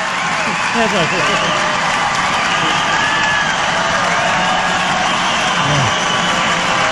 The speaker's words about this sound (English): And I left all the applause in just so you could hear the crowd go nuts.